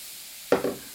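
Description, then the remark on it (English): Guinness is poured into a thick cake batter containing bicarbonate of soda and starts to froth, giving a soft, hissing fizz in a couple of short surges after a quiet start. “It's got a bit of bicarbonate of soda, so we might hear something as we pour in the Guinness.”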